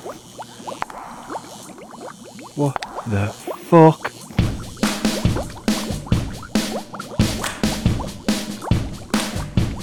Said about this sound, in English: These potions! It's a bubbling noise!